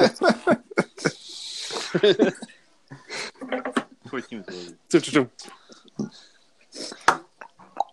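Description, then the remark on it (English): A voice imitates a creaking screen door from a scary movie, making a series of strained, warbling squeaks and groans in uneven bursts, with brief breathy noise between them. “The Hollywood, like the screen door from like a scary movie.”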